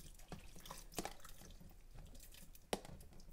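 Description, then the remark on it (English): Sauerkraut juice is poured into a bowl of beets, making soft wet drips and a few sharper splashes. It sounds quiet, with no talking. “So you take the sauerkraut and you just pour a little bit of the juice in with the beets.”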